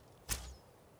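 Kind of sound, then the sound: sound effect, arrow shot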